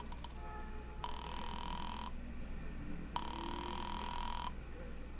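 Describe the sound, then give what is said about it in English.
A telephone rings twice over the line, dialed from a phone inside a filling station, two long buzzing rings separated by a short pause, heard thin through the receiver above a low steady hum. “dropped the nickel in and dialed Republic 2809 again, just on a hunch”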